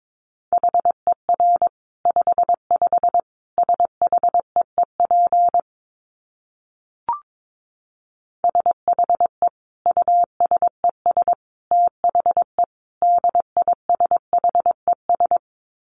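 Morse code sent at 22 words per minute: a single steady mid-pitched tone keyed into quick dots and dashes, broken by a two-second pause with one brief click, then resuming. No voices.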